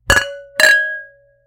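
Two bright clinks of wine glasses touching in a toast before tasting wines, about half a second apart, each leaving a clear ringing tone that fades slowly. The sound is fairly loud, with no voices.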